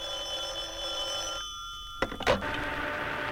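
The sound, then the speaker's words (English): An old Time Buster rotary telephone bell rings steadily and loudly, then cuts off with a sharp clatter as the handset is lifted, leaving a quiet hum. “today we're trying out the Time Buster Rotary Telephone.”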